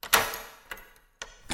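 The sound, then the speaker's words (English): A key rattles and turns in an apartment door lock, giving a few sharp metallic clicks and clunks spaced unevenly over a second or so, fairly quiet, with no voices. “Nearly 2 hours later, a key sounds in the door.”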